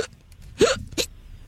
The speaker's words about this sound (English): Except for these hiccups.